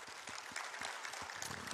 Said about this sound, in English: would you give the Lord a hand clap of appreciation?